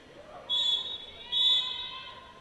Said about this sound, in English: the whistles you hear are whistles for the automatic portion of the clock operation.